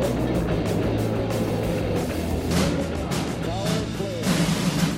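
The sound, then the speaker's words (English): Saturn V rocket engines roar at the Apollo 11 liftoff, a deep, loud, continuous rumble that holds steady throughout, with faint indistinct voices barely audible beneath it. “All engine running. Liftoff. We have a liftoff.”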